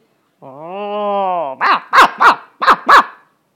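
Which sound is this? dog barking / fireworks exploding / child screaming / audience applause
dog barking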